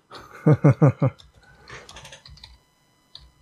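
Typing on a computer keyboard: a quick run of four loud clacking keystrokes, then softer, scattered taps and clicks before it trails off, as someone types that Ocean City, New Jersey is far superior to Ocean City, Maryland.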